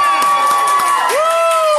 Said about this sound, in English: So, we have Now You See It, motocrossed genius. Shall we get a cheer for Now You See It?